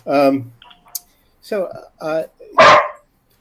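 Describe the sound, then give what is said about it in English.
A dog barks four times in quick, uneven succession, fairly loud, with the last bark harsher and rougher than the first three. “Oh my God, guys, it wasn't my dog. It's okay. It wasn't my dog for once.”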